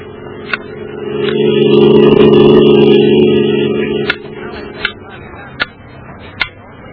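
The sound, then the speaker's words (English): A metronome, a small, precise time-interval measuring instrument used by pianists, ticks in sharp, evenly spaced clicks, a steady beat under a second apart. A low droning hum swells up and fades away in the middle while the ticking continues. “A metronome. A small, precise, time-interval measuring instrument that most pianists use.”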